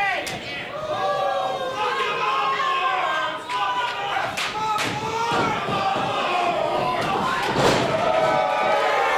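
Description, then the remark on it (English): In a wrestling match, Lars slaps Johnny Ruckus, who wears rubber gloves, and drops him to the mat: a few sharp, loud slaps and a heavy thud ring out over a steady roar of crowd noise and chatter, with the audience swelling after the impacts. “Lars with one slap drops Johnny on his ass.”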